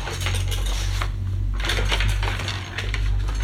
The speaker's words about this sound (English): I'll just go in the pen drawer.